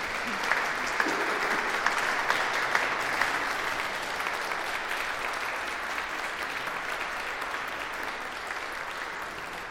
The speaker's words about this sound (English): Thank you, Sunday Club. Should we give them all a clap for doing brilliantly?